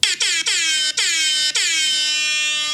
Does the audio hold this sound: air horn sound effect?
yes